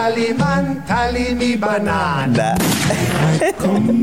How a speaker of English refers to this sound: Gunshots.